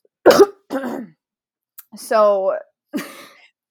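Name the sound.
coughing and throat clearing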